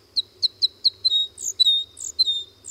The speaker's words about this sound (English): North America's two crossbill species, white-winged and red, are vagabonds, wandering in flocks until they find a suitable cone crop, where they might then stop to breed in small groups almost any time of year.